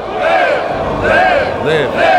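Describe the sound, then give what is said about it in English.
A large crowd roars and chants loudly and continuously, many voices rising and falling together in sustained swells, dense with no pauses. “oh, bro, yeah, the crowd.”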